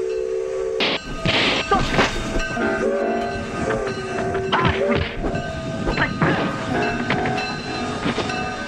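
A train rolls along the rails, rumbling and clattering steadily, with long horn-like tones sounding over the noise for the whole stretch.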